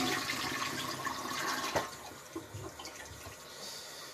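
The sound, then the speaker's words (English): Water is flicked and splashed at a person, a steady wet rushing and spattering with one sharper splash midway, and no one speaking. “I'm gonna flick this water at you.”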